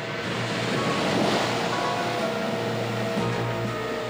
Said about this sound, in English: Waves crash against the coast with enough energy to turn over cars and destroy buildings.